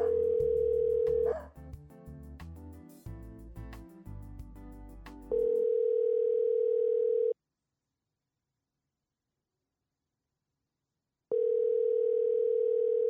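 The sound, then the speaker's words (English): A phone call being placed to a man who keeps dogs: a steady dial tone, a burst of dialing sounds, then two long ringback tones separated by several seconds of silence, with nobody picking up. “I was going to say, yeah, he's at the dog park right now. That's probably why he's not answering.”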